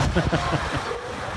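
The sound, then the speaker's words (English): Strong wind roars across a college baseball field where players try to hold down a tarp, a steady, buffeting rush, loud, with low rumbling gusts that swell briefly near the start before settling into a constant blustery hiss. “Helping them out, right? Because it's windy.”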